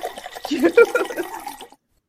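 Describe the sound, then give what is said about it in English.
Juice pours for under two seconds, with hollow, gurgling glugs rising in pitch as the container fills, then it stops abruptly into silence. “It was pouring on my end. It was going, gulp, gulp, gulp, gulp, gulp, gulp.”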